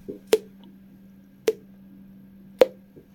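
Three separate drips from a showerhead land about a second apart, each a short, sharp plop with a brief tail, over a faint steady hum.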